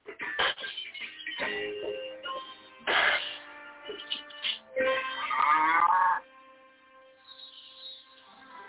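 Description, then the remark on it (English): A cow moos in several loud, drawn-out bellows, the longest and strongest near the middle, with quieter lowing and rustling between them before trailing off. “Even the cow thing.”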